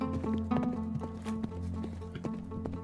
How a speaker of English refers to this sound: Keep clipping and clopping on with your horses.